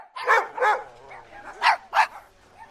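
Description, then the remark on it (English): A dog barks four times in two quick pairs, each bark short, sharp and clear, with a brief pause between the pairs and no voices around it. “South Korean developers have created a smart dog collar that can tell you what your dog is thinking, or at least take a good guess.”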